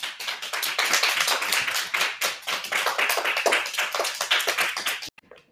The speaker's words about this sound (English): Nice job. Go ahead, give a clap.